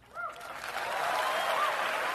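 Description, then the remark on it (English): A crowd at Liberty University in Lynchburg, Virginia breaks into applause, a dense hiss of clapping that swells after a brief start and holds steady and loud throughout, with faint whistles or cheers rising above it. “Now, an easy applause line at Liberty University.”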